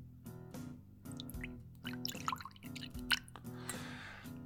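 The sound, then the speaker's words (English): Blanton's bourbon, 93 proof, poured into a fancy glass, a run of hollow gurgling glugs and drips rising in pitch as the glass fills, steady for several seconds with no talking. “Let's pour it, see if we can hear it.”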